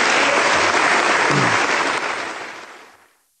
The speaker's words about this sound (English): Those applause, that was a standing O, and the applause went on for a long time and became cheers and all this stuff.